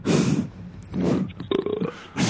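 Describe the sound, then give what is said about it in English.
A series of low, guttural burps, loud, repeated in a rough rhythm with a brief croaky, throaty sound between them, as if someone is forcing the belches on purpose. “You probably fake-ass burping, too.”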